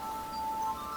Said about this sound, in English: That's my phone. Okay. Do you want to stop? No, I'm gonna just. Yeah, I'm just declining it.